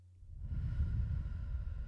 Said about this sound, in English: She's breathing into the microphone.